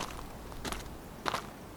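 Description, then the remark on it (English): Two soft, shuffling footsteps, as if someone is creeping quietly in slippers, each a brief scuff against a faint background with a short pause between them. “I crept over Toinette and found my slippers by the door.”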